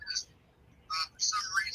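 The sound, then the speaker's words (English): Tinny, thin-sounding speech from a mother on speakerphone comes through in short bursts, a voice echoing off the phone with a hollow quality and brief pauses between phrases. “And it's echoing off the phone.”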